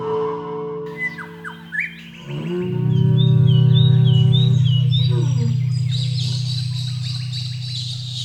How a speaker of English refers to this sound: I really do like the black satin bower bird.